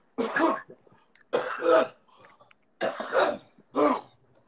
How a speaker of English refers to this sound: Hold on a second, I'll just cough and start.